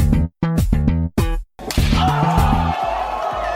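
A short, loud musical jingle, the theme song of the segment Does It Slap?: a few punchy, rhythmic stabs separated by brief gaps, then a fuller, sustained burst of bright instrumental sound to close it out.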